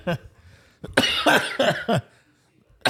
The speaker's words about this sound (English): It's not that funny. No, I wasn't laughing. I was coughing.